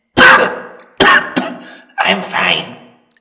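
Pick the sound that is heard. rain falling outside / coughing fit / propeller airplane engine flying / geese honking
coughing fit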